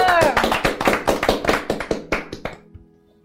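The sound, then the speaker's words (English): A short burst of applause at a meeting after a speech: brisk, sharp handclaps from a small group, loud at first and then thinning out and stopping. A brief voice sounds at the very start. “There is applause.”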